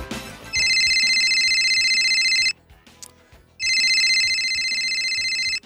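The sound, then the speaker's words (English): A loud electronic phone ringtone trills in two long bursts of about two seconds each, separated by a short pause, with a faint low background underneath. “There's the clue, Vossi. 1987, the first mobile phone call was made in Australia.”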